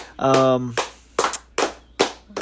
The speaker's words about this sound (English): I guess if y'all want to clap for the dude.